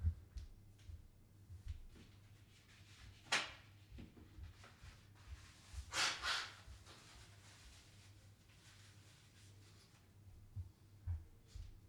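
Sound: blowing nose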